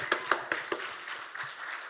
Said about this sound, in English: If you're going to clap, clap. Don't just give me a courtesy clap.